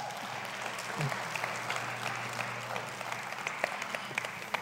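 An audience applauds steadily for several seconds, a dense wash of many hands clapping at a moderate, even level with occasional sharper claps standing out.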